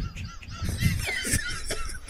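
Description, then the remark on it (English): A chicken clucks and squawks in a quick series of loud, harsh calls in a video being played, with a busy background of other birdlike noise and no talking. “This one is called, Is the Chicken Included?”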